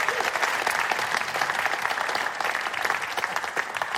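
A theatre audience at the Duchess Theatre breaks into a steady round of applause for everyone who works at the Duchess Theatre and at Avalon, dense overlapping claps forming a loud, even wash of sound that holds for the whole stretch without letting up.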